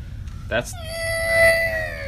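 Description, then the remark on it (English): A human voice imitates a cat's meow: a short breathy burst, then one long, drawn-out tonal cry that holds a fairly steady pitch before sliding slightly downward as it fades. “So you just see them going... Meow. Meow. Yep. Meow.”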